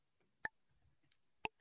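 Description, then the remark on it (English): A clock ticking for a timed quiz: two crisp, bright ticks spaced about a second apart, standing out clearly against an otherwise quiet background with faint low rumble between them. “We got to start the clock. We will start the clock.”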